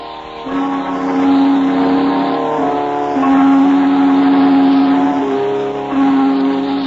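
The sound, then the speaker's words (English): A car engine runs steadily and loudly, its hum rising and shifting pitch a few times as if accelerating through gears while pulling away. No voices. “You hurry to your car and start toward the scene of the rendezvous.”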